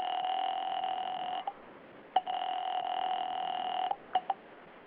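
A telephone call being placed to Smokey Sullivan: a steady, buzzing line tone runs for several seconds, broken by a few sharp clicks near the end. No one speaks.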